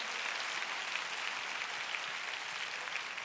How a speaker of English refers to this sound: If you think God is great, you ought to clap your hands and give praise to God.